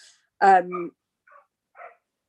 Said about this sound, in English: Puppy is woofing. Oh, hang on. There's going to be a dog fight.